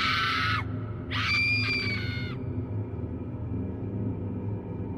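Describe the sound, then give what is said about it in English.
A person screams twice, a short, piercing cry followed by a longer, sustained shriek, loud, then fades out, leaving a low rumbling background. “I began to scream.”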